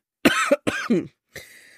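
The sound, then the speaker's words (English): A person still dealing with COVID coughs three times in quick succession with a persistent, harsh irritation cough, the last cough trailing off more softly. “Excuse me now, I'm going to cough.”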